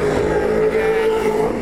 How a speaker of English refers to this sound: The engine doesn't sound quite as crisp as some of the other ones there for Marcus Cicanovic in 10th.